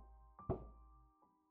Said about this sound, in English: I don't know if it was later that same night or another just like it, but I awoke once more to three slow knocks.